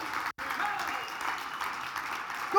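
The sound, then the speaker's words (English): A large crowd rises and claps and cheers steadily as a hand clap of praise to Jesus, a dense, continuous wash of applause with a brief cut near the start and a voice rising at the very end. “If you're thankful, why don't you rise to your feet? Give Him a hand clap of praise.”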